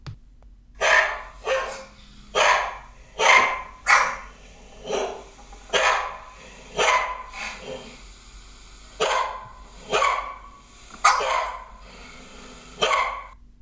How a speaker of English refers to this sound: And this is them barking the other day, probably at the postman or something.